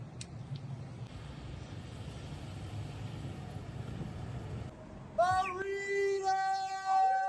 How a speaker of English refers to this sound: Now you can't even honk your horn in Calgary.